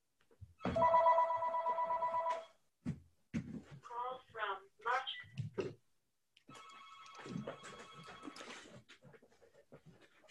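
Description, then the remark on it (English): The speaker's phone rings in two sustained bursts of steady electronic trilling, fairly loud, with a brief gap and some shuffling and breathy noises in between. “There's my phone.”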